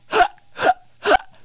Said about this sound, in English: You ever think you're going to have them forever? When I was a kid one time, dude, I swear to God, I had hiccups for 2 days straight.